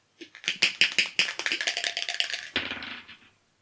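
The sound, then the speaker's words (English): A new 20-sided die, rolled to pick a comedian at random, clatters and rattles across a hard surface in a rapid series of sharp, bright clicks that slow and settle, ending with a final tumble and rest on 4. “So we are first rolling for comedian. Yes. We have 4. With the new 20-sided dice.”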